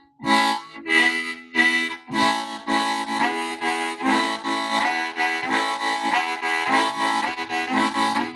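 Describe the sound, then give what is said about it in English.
A harmonica plays a train imitation in the breath pulse style, opening with separate chord blasts that then run into a steady chugging rhythm of paired coughing breath pulses, two breaths out and two breaths in. No voices are heard. “So you develop that by doing the train imitation with the breath pulse style.”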